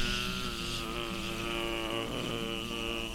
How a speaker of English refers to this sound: Y'all, I think we better take cover in this here corn. Do you know what those are? I mean, they're real big bees.